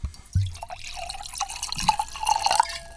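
Wine glugs and splashes as it's poured into a glass, the pitch of the fill rising steadily over a few clear seconds with no voices.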